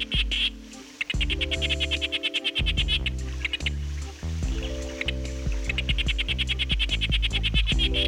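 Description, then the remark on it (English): A sharp-snouted day frog calls in rapid, high-pitched chirping pulses that repeat almost continuously, heard over a low, sustained musical drone whose notes shift now and then. “Given how rare this frog is, we are lucky to have recordings of its call, which is a rapid series of chirps.”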